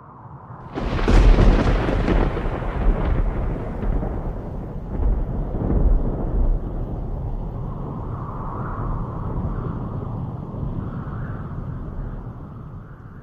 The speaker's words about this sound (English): My goodness, Master Tavern Keeper, how ever did you survive running into the heart of a sandstorm deep in the lands of Araby?